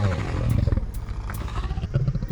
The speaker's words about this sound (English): Again he heard the roar.